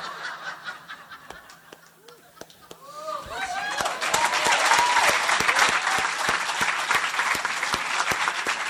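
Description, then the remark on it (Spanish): A concert audience's applause starts with a few scattered claps, then swells after a few seconds into loud, dense, steady clapping for a singer's story about being denied a visa, with excited voices shouting and laughing over it. “No, es que yo aplaudo es porque Dios dispuso la negada de tu visa para que nosotros también viviéramos 3 años.”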